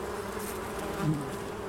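A dense, steady drone of many honeybees buzzing together in a swarm, continuous, with a slight swell in intensity partway through and no voices.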